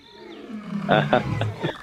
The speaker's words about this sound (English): Bit of going on in the background here. What's that noise? That is a lion, my friend.